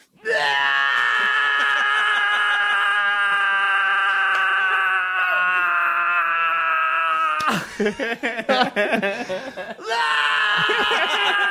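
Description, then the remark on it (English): A voice imitates someone screaming while vomiting: a long, loud, strained wail held for several seconds, breaking into choppy retching gasps, then rising into another wail. “He's like, and he's screaming and puking.”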